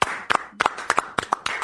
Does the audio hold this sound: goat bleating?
no